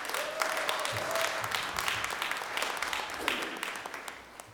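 An audience in a church sanctuary applauds steadily, a dense wash of many hands clapping at once that keeps up the whole time, with a faint tone and a few murmuring voices underneath.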